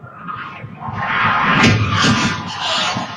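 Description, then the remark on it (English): A loud car crash: a speeding car's engine roar breaks into heavy crunching impacts and scraping metal as it hits a car and slams into the other cars on the street, sideswiping them, a sustained noisy clatter over about three seconds, with no voices. “Look how fast this guy is going, and he just hits a car and then just slams into all the other cars on the street.”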